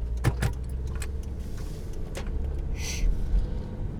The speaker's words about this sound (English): Just totally didn't see that big old truck. He was barreling towards me.